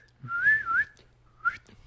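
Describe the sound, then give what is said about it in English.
A person whistles to call a bird, a wavering, rising-and-falling tone for about half a second, pauses, then gives a shorter second whistle, clear with no talking. “And I tried some different whistles.”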